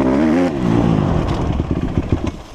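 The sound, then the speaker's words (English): A dirt bike engine revs sharply up and drops back down, then sputters with rapid, uneven pulses as the throttle blips, loud with no voices. “And when it revs up quickly, it's gonna rev back down quickly.”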